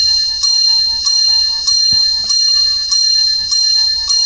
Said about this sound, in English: Bells! Yeah!